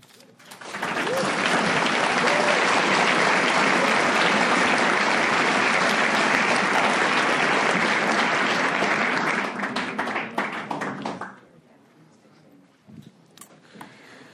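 A crowd at a recovery meeting for alcoholics breaks into loud, sustained applause for a speaker, a dense wash of clapping that holds steady for about nine seconds, then thins into scattered claps and fades out.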